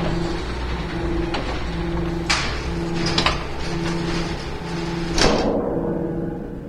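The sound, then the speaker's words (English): Heavy environmental protection doors of a loading bay slide shut with a steady mechanical hum and motor whine, a few metallic clunks along the way, then a final loud thud as they close, leaving quiet. “Environmental protection doors now closing.”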